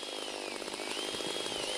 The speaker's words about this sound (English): Ladies and gentlemen, may I introduce you to the iSharp. The most loud, powerful, wood, over-engineered pencil sharpener the world has ever seen. Let's see how it works. Simple boot up process.